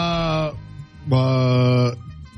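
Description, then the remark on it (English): A young live baby doll ram, for sale in the area, bleats twice, two loud, harmonically rich cries, the first about half a second long and the second longer, separated by a short pause. “Okay, so how much is the ram going for? It's an actual animal, a little young one.”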